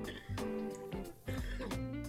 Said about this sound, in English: Excuse me, I'm going to cough.